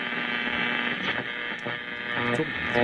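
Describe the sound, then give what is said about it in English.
A steady wash of crackling radio static with a droning electrical hum running through it, loud and continuous for a few seconds and swelling slightly at the end, with no voices. “Static dies down and you come back to me, but I think you'd miss whatever nuggets of wisdom I was talking about.”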